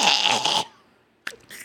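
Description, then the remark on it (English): A harsh, drawn-out cough from eating something spicy bursts out, followed by a short pause and then two more quick, sharp coughs. No one speaks. “Why is it spicy? I'm coughing like a toddler.”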